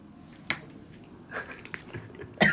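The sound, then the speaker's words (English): Close-up crunching as someone bites into crisp food: a sharp crack, a few scattered smaller crunches, then a loud final bite, with no talking. “Crunch.”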